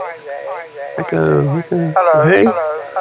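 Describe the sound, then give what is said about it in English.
A caller's tinny, band-limited phone-line voice comes through with a heavy echo, the garbled speech doubling back on itself so it smears into an unintelligible, reverberant wash that runs throughout. “Oh no, oh dear, you have a terrible echo.”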